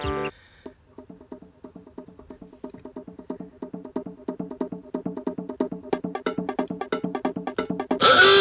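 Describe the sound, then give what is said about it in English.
A bright, plucky tune from the video game Donkey Kong Country 3 plays on its own, with short staccato notes repeating in a steady bouncy rhythm that gradually grows louder, ending in a brief burst of noise. “That is from Donkey Kong Country.”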